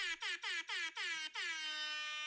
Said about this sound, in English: So shout out to all the ladies who are, let's give them an air horn. Where's my pregnant ladies at? Hit them with it.